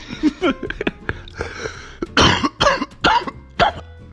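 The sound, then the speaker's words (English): Several harsh, loud coughs in a cluster, with short gaps between bursts and some throaty rasp; no speech alongside. “It's good that the cough is there.”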